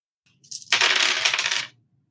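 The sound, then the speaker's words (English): A bright clatter of dice tumbling across a hard table for a might roll with a -2 dice penalty. It is a brief rattle that builds quickly, rolls for about a second, then settles into silence. No voices. “With -2 dice? Yes, please. Go for it. Do it.”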